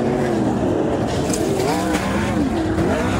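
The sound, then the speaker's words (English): Race car engines roar steadily at a speedway in Australia during a crash in which multiple cars lose control and flip through the air, their pitch rising and falling as the cars accelerate and shift, loud and continuous throughout with no talking. “It's a heart-stopping crash on a racetrack. Multiple cars lose control and start flipping through the air.”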